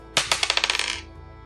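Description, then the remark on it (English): Dice are rolled across a tabletop during a tabletop game, coming up nine: a sharp first hit, then a quick run of bright, rattling bounces that speed up and fade out within about a second, with no voices. “Need you to roll again.”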